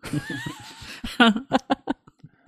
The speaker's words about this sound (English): Just cat. Now we need to hear more. Just cat.